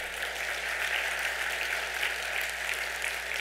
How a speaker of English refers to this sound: So we applaud Jesus for you guys still being here. Aren't you glad they're still here?